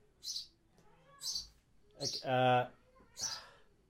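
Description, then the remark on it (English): A bird chirps in a series of four sharp, bright calls spaced about a second apart, the third one longer and more squawk-like, with no talking over it; the bird keeps chirping after being fed. “Okay, so I fed the bird and it's still chirping.”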